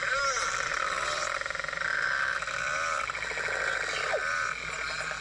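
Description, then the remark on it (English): Beluga whales chatter continuously with squeaky whistles, chirps and croaking pulsed calls, mixed with rapid clicking buzzes of echolocation, all heard through a steady underwater hiss. “No, those were all belugas.”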